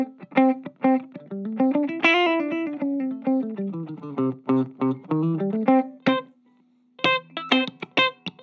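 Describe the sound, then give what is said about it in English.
An electric guitar set to both pickups plays a clean, rhythmic R&B-style riff alone, with bright plucked notes and chord stabs, a short held note near the end, then quick picked notes resuming. “Well, and then of course the you know the double pickup thing for that R&B kind of thing is so cool too.”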